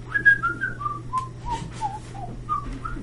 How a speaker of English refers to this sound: And then I whistle out.